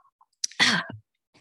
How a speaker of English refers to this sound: Sorry, I have to blow my nose real quick. Don't mind me.